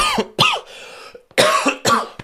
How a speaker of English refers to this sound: It's cough, man. This cough's killing me.